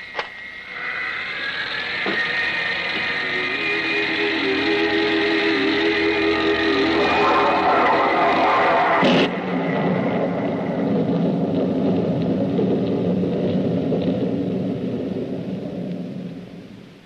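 Heavy mechanical drills rumble steadily with a layered droning whine, jolt with a sharp burst midway, then keep grinding before tapering off at the very end. No voices are heard.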